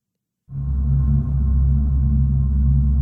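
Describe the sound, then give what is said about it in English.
An Audi e-tron GT electric car's synthetic drive sound starts abruptly after a short silence: a loud, deep, steady droning hum with layered low tones that holds unchanged to the end, with no talking. “Audi e-tron GT, ladies and gentlemen.”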